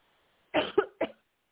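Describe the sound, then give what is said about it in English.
A quick burst of three coughs, each one sharp and throaty, clustered within about half a second before falling silent. “Sorry about my coughing.”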